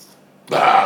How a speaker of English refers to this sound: Wow. Can you not burp on the podcast?